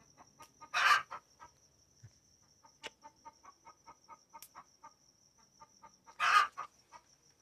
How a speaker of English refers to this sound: What's wrong with you, bird?